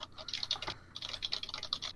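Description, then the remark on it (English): Rapid computer keyboard key presses clatter in a steady stream while someone checks email, pausing briefly near the middle before the quick tapping resumes; the letter S and then the delete key are hit. No one speaks. “I accidentally hit the letter S and then I hit the delete key.”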